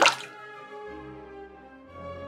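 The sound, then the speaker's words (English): A penny tossed into water plops with a sharp, bright splash, followed by a hollow, ringing resonance that fades slowly over a couple of seconds. Moderately loud, with no voices. “She tossed a penny she found in her pocket from jeans now in the dryer.”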